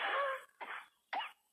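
Three harsh, breathy coughs in quick succession, the first one longest and loudest, followed by two shorter bursts with brief gaps between them, with no talking.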